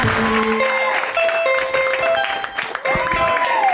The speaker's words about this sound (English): Get ready to clap. Put your hands together. Put your hands together.